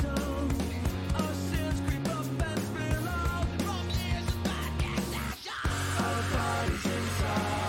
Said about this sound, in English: Okay, I'm going to stop it right here. Let's talk about that scream a little bit. It's the only scream in the song.